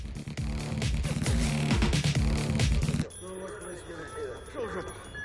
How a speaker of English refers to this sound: And the wind chimes. Big fan of the wind chimes.